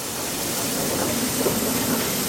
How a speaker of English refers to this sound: Well, that's it. The train is coming into the station. You can hear the steam rising onto the platform.